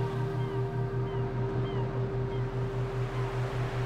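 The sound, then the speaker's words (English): A few faint, scattered cries from seagulls soaring overhead at a sandy sea beach drift over a steady low hum and a soft rhythmic pulsing, like a calm shoreline ambience. “Slowly, steadily, listening to the birds, the seagulls, soaring overhead.”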